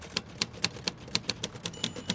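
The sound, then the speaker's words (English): Rapid, irregular clacking of typewriter keys being struck as someone writes, about ten sharp strikes in a couple of seconds, fairly quiet, with no voices. “I'm writing, like you'll be when you start punching those keys.”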